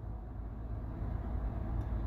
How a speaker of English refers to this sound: And I have 13 minutes, and now I gotta stop again because there's another truck coming. I hate it when they do all their rushes at one time. You know, like they just keep coming and then they'll be gone for like 3 hours.